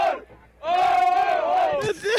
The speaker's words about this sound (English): They're on a tugboat called Mashur, and this crew is having one after getting this boat. Is that chanting? Yeah. It's the name of the boat they're chanting. It's like a soccer celebration.